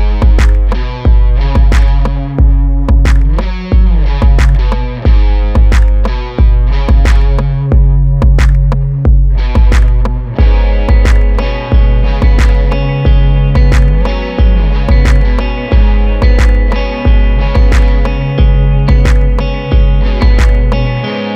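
A loud recorded band snippet with a steady, heavy kick pulse, over which an effected, slightly distorted guitar picks a high arpeggiated figure that repeats throughout. No one speaks.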